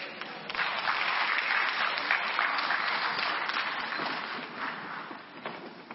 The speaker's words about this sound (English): I'm encouraged with your clap, but that's not really, really it. Praise the Lord. I don't want you to clap.